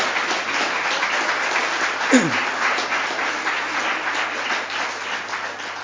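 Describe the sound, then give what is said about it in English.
Sustained applause from an audience thanking the organiser and her team for putting on a camp, a dense steady patter of many hands clapping for several seconds, with a brief sweeping thump partway through. “Yeah, we should clap then.”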